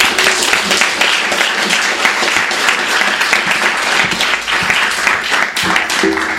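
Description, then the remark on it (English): A bookstore event audience applauds steadily for several seconds to welcome author Lydia Millet, a dense, even wash of many hands clapping at once with a sustained, fairly loud level and no speech over it. “Lydia Millet's going to kick us off, so let's give her a warm welcome.”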